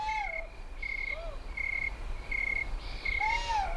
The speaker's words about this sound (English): Nearby, what looked like two owls fight in the darkness.